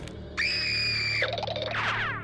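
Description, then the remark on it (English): Mickey Mouse's shrill, high-pitched cartoon scream from the cartoon Boiler Room holds steady for about a second, then breaks into wavering, squeaky yelps, loud over a low background hum; the same sound as the squirrel's scream in Cool Friend. “The exact same sound that the squirrel makes when it screams in Cool Friend.”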